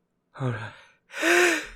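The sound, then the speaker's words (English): A single loud sneeze: a sharp voiced intake of breath, a brief pause, then a forceful, breathy burst that rings out for a moment before stopping. No one speaks. “I'm gonna be sneezing for the next 10 minutes now.”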